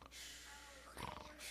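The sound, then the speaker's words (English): A person imitates snoring with their voice: a long, raspy inhale that breaks into a short snorting rattle, then another breathy rasp, fairly quiet. “We lay down at night, we snore sometimes.”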